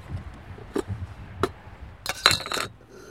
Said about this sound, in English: They're titanium for backpacking and stuff. It's a little titanium kettle and cups. You could use anything though, it doesn't have to be titanium.